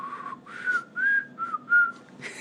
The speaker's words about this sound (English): But I can't whistle. And yet you do anyhow. Please spare us.